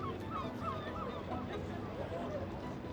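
Seagulls call repeatedly in short, squawking cries over a steady, dense background wash, with several birds overlapping and no clear talking.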